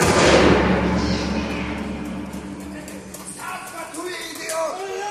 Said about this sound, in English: You walk in and around the walls are barrels, boxes and crates. And as you walk in, the door slams behind you.